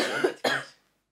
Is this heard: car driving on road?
no